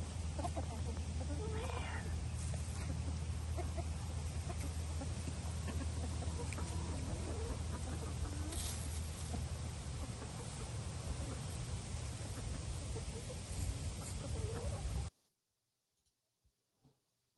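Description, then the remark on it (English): A flock of barnyard chickens, purebred and barnyard-mix birds, clucks and chatters steadily amid a dense, noisy background, with possible faint voices, before the sound cuts off abruptly into near silence. “It's like, you know, I love the, don't get me wrong, I love my purebred birds, but the barnyard mixes, man, the colors are just amazing.”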